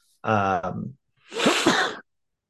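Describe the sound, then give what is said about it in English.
A single sneeze: a voiced, rising intake of breath, a brief pause, then a loud, breathy burst, with no speech around it. “Bless you.”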